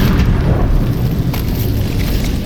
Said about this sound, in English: The floor splits. The walls crack. Pipes and support beams rip out of plaster.